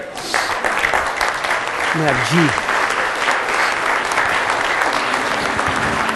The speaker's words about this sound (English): Let's stand together and give him a hand clap of praise, would you?